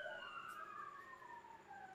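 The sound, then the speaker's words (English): A siren wails outside because Big Papa Pump is here, its tone gliding slowly downward in a continuous sweep, over a low background rumble with no talking. “There's sirens outside because Big Papa Pump is here.”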